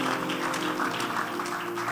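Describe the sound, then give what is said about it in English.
An audience claps their hands for the Lord in a dense, steady burst of applause that holds at an even volume throughout, with a faint sustained low hum underneath. “If you love the message, give the Lord a good clap of hands.”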